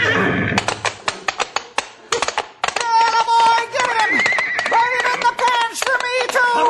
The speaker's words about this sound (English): Look out for that horse, boss! He's coming for you! Get him back! Get him back!